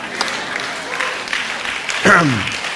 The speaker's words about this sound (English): Amen. Notice I got three claps and a good amen.